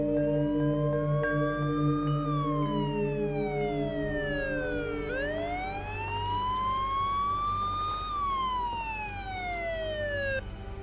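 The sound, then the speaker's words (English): A police car siren wails loudly in slow rising and falling sweeps as the police car arrives, continuous over a low rumbling engine hum, with no voices. “The police are here.”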